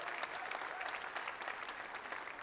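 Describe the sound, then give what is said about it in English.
A church audience claps steadily for the pastor's wife, a dense, sustained wash of many hands with no pauses, holding an even loudness throughout. “I assume you're applauding her for what a valiant effort that was so far”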